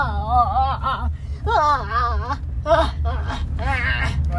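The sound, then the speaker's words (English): A person makes a series of high, wavering whimpers and squeaky whines, imitating a cub's cries, in short bursts over a steady low hum. “making cubby noises and then scratching her head and then hiding”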